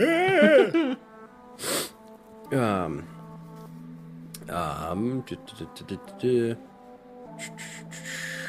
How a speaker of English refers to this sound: Oh, Time for yawn number six.